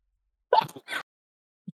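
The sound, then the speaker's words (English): A single sneeze: a quick voiced intake followed by a sharp, breathy burst, then silence and a faint soft thud. “Bless you.”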